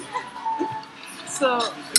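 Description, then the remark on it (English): Water pours into a glass with a gurgling trickle whose ringing tone rises as it fills, ending in a sharp glassy clink. Voices murmur faintly underneath. “Okay, I'm trying to put a bit more water than inside.”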